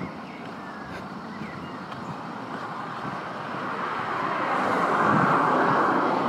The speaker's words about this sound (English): It's all tires, isn't it? Tires rubbing off the road.